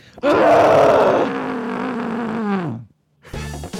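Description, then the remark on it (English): A long, muffled scream into a pillow lasts about two and a half seconds, loud and strained at first, then sagging lower in pitch before cutting off. A short voiced sound follows. “This is absolutely a scream pillow moment. Let me get my scream pillow out.”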